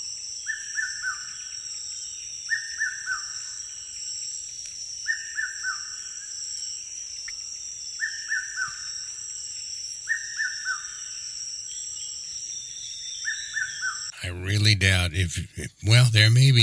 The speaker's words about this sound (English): I doubt if there's anybody who can guess that one, but there's probably a few of you, some diehard bird watchers, that may know that that is the red-winged cuckoo. It is found in the Philippines, and it is also found in Thailand and in Southeast Asia